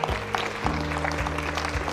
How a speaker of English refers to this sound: Come on, clap your hand. Get on your feet. Come on, thank God that we gonna do better. Come on, clap your hand.